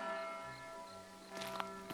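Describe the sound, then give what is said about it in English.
Church bells ring evensong through a street with a sustained, shimmering tone of layered harmonic overtones, with a brighter clang near the end, no voices present. “The even song of church bells rings through the street.”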